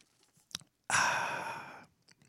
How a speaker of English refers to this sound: There. All right. There's another one. That's a bonus. That's a bonus slurping of the coffee for the Let This Mind Be In You people that tuned in.